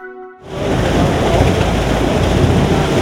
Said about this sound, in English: An enormous vat of bubbling liquid, part of a new enterprise for Tennessee agriculture. Sazerac makes some of the world's premium bourbons, and now they're in the Tennessee whiskey business, fermenting and aging alcohol at their facility in Luverne.